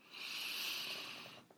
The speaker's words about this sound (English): Just notice what's happening naturally, effortlessly, and softening the calm, softening of your body with each breath. Breathing in your nose.